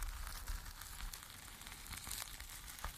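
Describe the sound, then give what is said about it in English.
A steady, gritty crackling texture, like tires rolling over crushed gravel or a sizzling fire, with dense hiss and scattered sharp pops throughout. No voices. “This reminds me what aligned tires on crushed gravel. Or even a version of a fire sound.”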